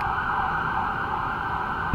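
A steady, loud New York City emergency siren wails continuously, holding a sustained high tone over low city traffic rumble, with a brief knock near the end.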